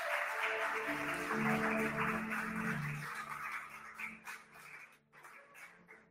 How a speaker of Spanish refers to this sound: aplauso al Señor por los hombres.